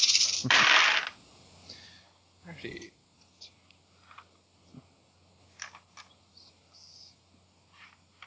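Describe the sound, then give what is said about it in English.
A large handful of 21 dice is rolled as a dice pool in a tabletop role-playing game, spilling out in one loud, rattling clatter, then a few stray dice keep clicking and tapping sporadically as they settle over several seconds. “I'm rolling 21 dice.”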